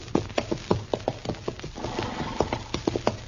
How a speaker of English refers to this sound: Darn horse. Seems he's just bound to stomp all the dust and canvas in my eyes.